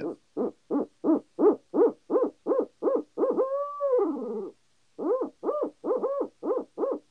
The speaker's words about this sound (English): I was going to probably run the owl hooter in the conversation